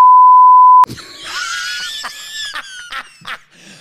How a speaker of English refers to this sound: I wrote that one down because I wanted to beep it and see your reaction.